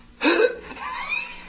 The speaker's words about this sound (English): Start out with the letter E. Mm-hmm. You say E. Mm-hmm. I say E, and then you go... And then you kind of gasp.